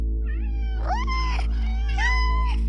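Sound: cat meowing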